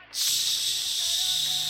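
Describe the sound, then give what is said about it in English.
A loud, steady hiss of a spray can starts abruptly and keeps going without a break for over a second, bright, with no voices. “But after a few of them kind of like pass you, you look through the side mirror and you see like one of them drive by with like a spray can and just.”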